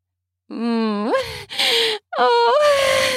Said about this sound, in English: Moaning the whole time.